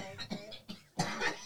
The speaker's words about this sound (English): I hate cough attacks. Okay? I'm good. Okay. You don't sound good.